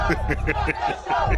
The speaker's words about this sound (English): You can hear people screaming, stop the show.